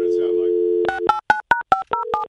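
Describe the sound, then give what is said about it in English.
A steady dial tone gives way to about seven quick phone keypad beeps, each a different pitch, pressed in a rapid, haphazard sequence, loud. “It would sound like if a dog dialed 911.”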